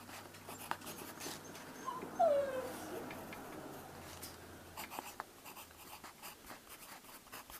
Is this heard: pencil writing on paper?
yes